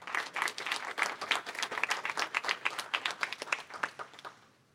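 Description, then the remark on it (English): An audience applauds the young poets after a poetry reading, with dense, overlapping handclaps that hold steady for about four seconds, then taper off and fade near the end. “And so could I have another applause for the poets?”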